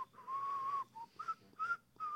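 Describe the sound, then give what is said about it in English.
Someone whistles a short melodic tune, a long sustained note followed by several shorter notes with brief pauses between them, clear with no talking. “Why are we whistling?”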